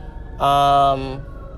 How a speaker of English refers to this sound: Speaking of things that you think about or hear on a daily basis, sirens. And fire trucks in particular, as I'm sure you're hearing as one is passing me.